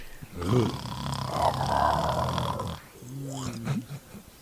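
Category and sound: vocal imitation, voice imitating loud snoring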